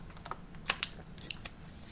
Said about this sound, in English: And Nats fans, let me take a sip of water real quick.